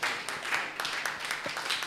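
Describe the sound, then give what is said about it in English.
Many people at a church service clap together to celebrate the Lord in a dense, steady wash of applause that fills the whole stretch, even in loudness, with a faint murmur of voices underneath. “Clap your hands and celebrate the Lord.”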